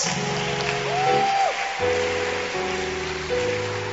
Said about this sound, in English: And clap your hands for Jesus.